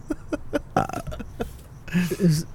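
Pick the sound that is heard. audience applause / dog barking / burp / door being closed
burp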